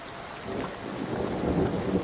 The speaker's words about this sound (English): Ah, look at that, we've got hailstones. There you go, hailstones. In June.